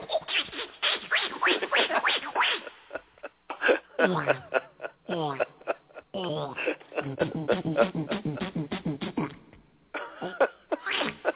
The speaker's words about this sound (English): He came over to our house and he started, like, he took his trombone apart and he started making all these really weird sounds with it.